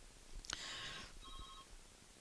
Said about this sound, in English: Nope, hang on, my phone's ringing. I think it'll quit. Just hang on a second. That's actually my fax machine that's ringing, so it'll only ring a few times, then it'll quit, and I apologize.